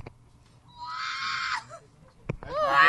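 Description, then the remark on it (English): A person's voice imitates the Wilhelm scream, a shrill, strained movie-style scream, holding a harsh squealing cry for about a second, then breaking into a second, higher squeaky wail after a short pause. “Just as the Wilhelm scream. That's what I was trying to mimic, but like I'm too R2-D2-y.”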